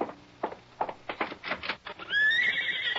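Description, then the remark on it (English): A horse whinnies loudly outside, its high, wavering neigh rising and trailing off, preceded by several rhythmic clip-clop hoofbeats on hard ground, with no one speaking. “Why, yes, that's a horse out there.”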